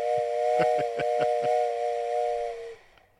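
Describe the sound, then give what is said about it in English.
A loud, sustained steam train whistle with layered harmonic tones and a hissy edge, punctuated by rhythmic chuffing bursts, holding for nearly three seconds before cutting off abruptly. “Play the whistle. Play the fucking whistle.”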